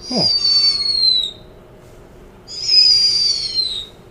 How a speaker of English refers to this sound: Today's animal is the snowy owl.